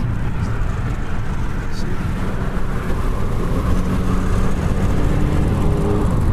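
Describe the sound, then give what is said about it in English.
The petrol V6 engine of a car with paddle shifters rumbles steadily and loudly, its note climbing slightly toward the end as it revs a little. “And it's a very nice sound with the V6.”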